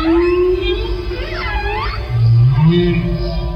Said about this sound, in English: I don't want to hear any goddamn music. I just want to hear the fucking whales.